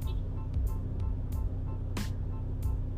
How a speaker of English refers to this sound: Damn, how many times she gonna lock her fucking car? God damn.